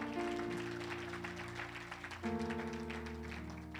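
A church audience at a spiritual meeting claps steadily for the Lord Jesus in a dense, continuous patter, with sustained keyboard chords droning underneath that shift to a new chord partway through.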